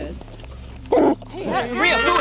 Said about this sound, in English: You hear the officer's police dog barking in the back of the patrol car. And then suddenly, that sound gets closer.